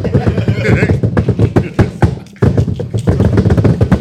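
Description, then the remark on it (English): A voice imitates rapid tap-dance foot tapping, a fast, steady string of sharp percussive clicks, with a brief pause partway through before the rhythm resumes. “You're just down he was just tapping his fucking feet.”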